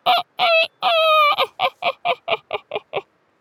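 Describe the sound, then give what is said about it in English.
A loud rooster-style crow of three drawn-out calls breaks into about nine quick, shortening cackles, a cockerel's cock-a-doodle-doodling laugh, with no talking. “Gus giggled, mostly at the cockerel's funny cock-a-doodle-doodling laugh rather than his joke.”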